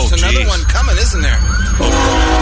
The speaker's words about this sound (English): Sure enough. There's a train coming the other direction.